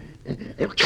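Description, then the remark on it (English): A short run of snuffling, growly intakes of breath builds up and ends in one loud, explosive sneeze from a person, who has a bad cold, abrupt, with no talking. “Gesundheit.”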